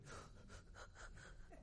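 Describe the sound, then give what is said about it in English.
A person takes a quick series of sharp, gasping inhales, about six short breaths in a steady rhythm, fairly loud with no talking, imitating someone running a race while only breathing in without exhaling. “Imagine trying to run a race and you're just breathing in.”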